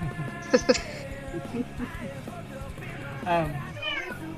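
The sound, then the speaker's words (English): A cat meows a few times: two short, sharp cries near the start, then a longer, wavering meow later, amid a busy, murmuring background with faint voices. “Where's the kitty?”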